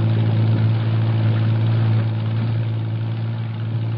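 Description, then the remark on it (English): A patrol boat engine drones steadily as the boat shoves off from the waterfront, a deep, even rumble with a low hum that holds constant throughout, with no voices. “Jeffries, Morris, and I race to the waterfront and pile aboard one of the several patrol boats lined up for the operation. We shove off.”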